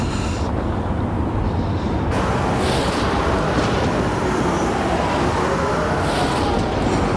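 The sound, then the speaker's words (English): A truck engine roars to life and keeps rumbling loudly, a steady, gritty drone that grows brighter after a couple of seconds as it pulls away. No voices. “Get that truck going.”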